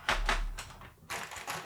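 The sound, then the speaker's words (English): A quick burst of clacky typing on a vintage Cherry mechanical keyboard, several sharp keystrokes in an uneven rhythm with a brief pause before more keys are struck, fairly loud with no talking. “It's based on a Cherry for the same era. So I actually have one here.”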